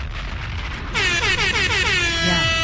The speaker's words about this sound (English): And the air horn does not do it justice. It really doesn't.